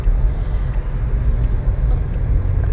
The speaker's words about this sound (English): Wow, this traffic. I forgot what it was like.